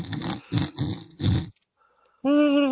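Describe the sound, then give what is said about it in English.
A voice imitates a weird snore: four rhythmic, raspy snorting breaths, a brief quiet pause, then a loud, nasal, whistling whine held to the end. “Or was it Big Bird that had the weird snore?”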